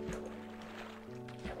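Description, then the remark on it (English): A rowboat paddles through water with soft, repeated sloshing strokes, heard over a steady sustained tonal hum that changes pitch partway through. No one speaks. “But let's hop in a boat, like I said.”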